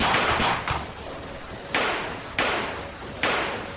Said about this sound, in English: Who the fuck is doing all that shooting?